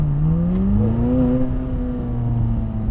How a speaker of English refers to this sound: With that being said, brothers and sisters, we'll just put it into sport mode for a quick second just so you guys can hear the engine.